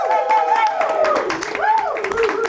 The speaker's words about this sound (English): Let's clap it up for Helsinki, the host city of this.